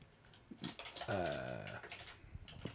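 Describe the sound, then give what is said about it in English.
Scattered, soft keyboard clicks tap out an irregular rhythm as someone types a Google search for first anniversary gifts, briefly overlapped by a sustained voiced tone in the middle. “It's the first thing that popped up when I typed.”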